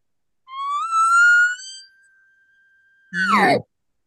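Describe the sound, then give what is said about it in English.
A single elk location bugle imitated on a diaphragm call: a tone climbs into a long, thin, high whistle that holds steady, then breaks into a brief raspy growl at the end. Loud, no talking. “That's a perfect location bugle right there on its own.”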